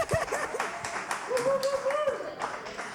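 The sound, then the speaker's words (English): A crowd claps steadily for a few seconds, a dense patter of hands with a voice calling out a drawn-out cheer over the applause. “Everybody clap Yay.”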